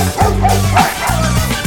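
A dog barks loudly, four sharp woofs in quick succession with a slightly yipping, whiny edge and no other sounds between them.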